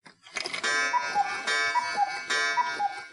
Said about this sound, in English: Cuckoos are a well-known family of birds, made famous by the common cuckoo, whose voice is imitated by cuckoo clocks.